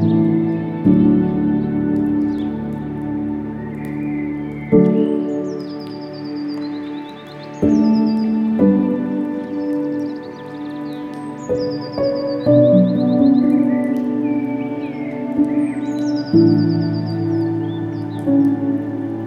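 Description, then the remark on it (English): Birds chirp and trill in short repeated bursts throughout, fairly close and clear, layered over a steady low, warm background drone with no one speaking. “Take a moment now and follow Jesus' advice to consider the birds.”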